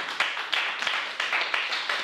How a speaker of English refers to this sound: Someone give the Lord a clap.